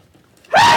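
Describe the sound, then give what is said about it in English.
A single sneeze bursts out after near silence, loud and sudden, with a breathy rush and a short voiced, rising tone at its peak before it cuts off. “God bless you.”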